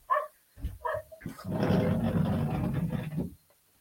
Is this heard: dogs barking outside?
yes